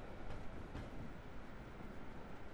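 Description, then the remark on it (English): A commuter train rumbles steadily across a railway bridge in London near Vauxhall and Nine Elms, heading toward the Waterloo terminus, a continuous low, broad roar with faint clatter, with no voices. “Opposite the gates of the park, commuters from Hampshire and Surrey pass over railway bridges, snaking towards the terminus at Waterloo through residential towers sprouting up around Vauxhall and Nine Elms.”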